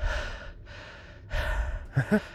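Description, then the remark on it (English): A voice imitates the heavy, winded panting of someone standing with hands on hips and sweating: three long, loud, breathy exhales and inhales, ending in a couple of short voiced gasps. “No one's fucking breathing heavy, and then, like, I'm wiping sweat out of my eye, and I'm looking around, and everybody's dry”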